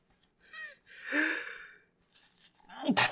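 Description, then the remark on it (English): A loud sneeze: a couple of sharp, rising gasping inhales build up, then a sudden explosive burst at the very end. “I'm gonna be sneezing for the next 10 minutes now.”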